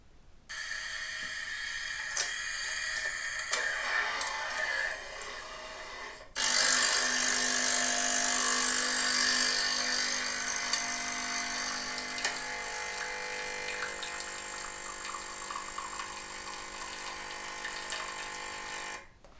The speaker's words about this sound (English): Is that an espresso machine? Yep. Good job, dude. Thanks, man. Way to go. Which is funny. It's a coffee machine, but espresso machine. It's an espresso machine.